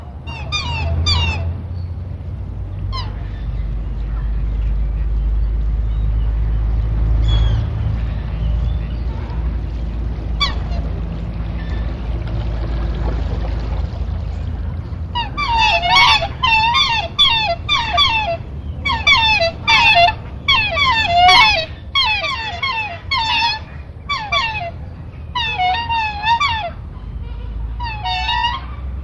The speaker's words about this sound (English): you do begin to get terrific activity amongst our geese and our ducks on the lake, for example.